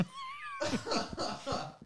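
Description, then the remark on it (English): A cat meows several times in quick succession, fairly loud, each cry rising and falling. A faint steady tone hangs in the background just before the meows begin. “And as they were doing the walk, it was just like, meow, meow, meow.”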